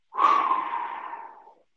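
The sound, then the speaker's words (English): One long, breathy exhale, fairly loud, like someone puffing out air while catching their breath. It fades gradually over about a second and a half, with no talking. “Whew, I'm out of breath. Hold on. Give me a moment.”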